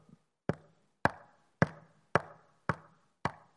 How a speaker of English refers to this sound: There's a lot of people I've seen that have preached a message on this where they just come in and start knocking on the door.